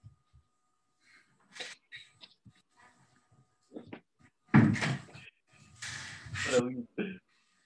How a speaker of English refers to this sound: Close the door, please, mate.